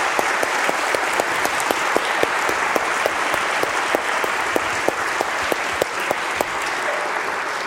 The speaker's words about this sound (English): Let's round of applause for these guys. They did a fantastic job, didn't they?